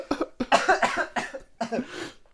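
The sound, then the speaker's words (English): A loud run of about five harsh coughs in quick succession, exaggerated and forced as though someone is mimicking a cough, with short gaps between bursts. “I'm coughing.”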